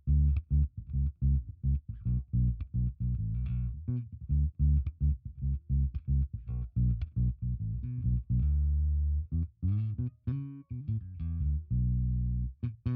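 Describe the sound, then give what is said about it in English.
Electric bass with fairly new but slightly worn strings, played fingerstyle with the tone knob at 50%, giving a rounder, less bright sound; a steady run of plucked low notes, fairly loud, with a few sustained, bending notes near the end and no talking. “Let's take that tone to 50%, get a finger style.”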